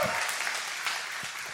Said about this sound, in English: Could you stand to your feet real quick? Big round of applause here, guys.